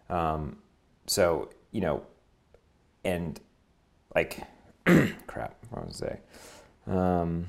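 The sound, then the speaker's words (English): A man clears his throat several times in a row, loud, in short rough bursts separated by brief pauses, with a few voiced grunts mixed in. “Well, let me pick it back up while you clear your throat”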